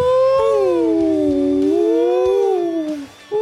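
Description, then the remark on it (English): A voice imitates whale song with one long, loud wailing tone that slides slowly down in pitch and fades, then a brief new rising note starts at the end. “It's really quickly becoming whale song week on week, isn't it?”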